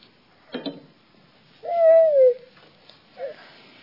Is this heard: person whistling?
no